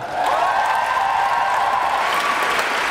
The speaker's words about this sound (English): Please put your hearts together and applaud all the 22 young poets up onto this microphone tonight, as well as all the librarians and all the schools around this Portland city.